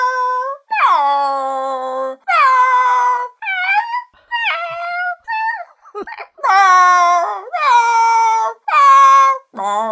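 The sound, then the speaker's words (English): A person imitating their bored cats shouting, letting out a rapid string of about eight loud, whiny meows with bending pitch, separated by brief gaps. “I apologise to everyone's ears for that, but, you know, I imagine your cats are going mental now that they've heard all that noise you've just made.”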